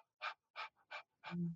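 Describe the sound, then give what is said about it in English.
A person demonstrates rapid mouth breathing: four or five quick, breathy puffs in a steady panting rhythm, the last one ending in a short voiced, throaty gasp. “If you look at populations of people with anxieties, fear-based disorders, even anorexia, depression, including asthma, many of them breathe way too much, and they breathe through their mouth.”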